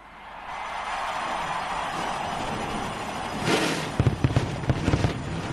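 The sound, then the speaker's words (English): Race car engines at Close Motor Speedway fire up on President George W. Bush's videotaped command before the 18th running of the Winston, into a loud, steady roar; near the end a quick series of sharp fireworks bangs pops over the rumbling engines. “If you hear them come to life, the firewall of course go off at the same time as we get ready for the start of the 18th running of the Winston.”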